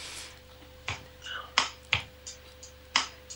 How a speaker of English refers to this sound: Now remember, folks, you're hearing this from a microphone, so you're hearing the keyboard being played as opposed to coming direct off the system, which the eventual track will not have that cracking noise in it.